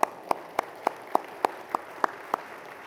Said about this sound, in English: Local churches, you can clap, sure, why not?